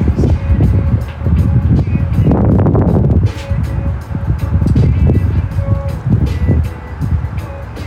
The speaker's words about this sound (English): The wind isn't bad. It's more of an occasional gust than it is like a steady breeze. You get more time. Sometimes it blows a little longer. Sometimes it slows down. It's not too horrible.